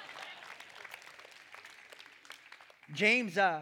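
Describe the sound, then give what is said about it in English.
Soft, polite golf clapping from a church audience, a steady patter of many hands at a modest level for about three seconds, then a man's voice starts speaking as the clapping stops. “But James, golf clap.”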